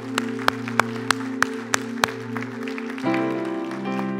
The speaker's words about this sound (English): Give the Lord an applause, would you?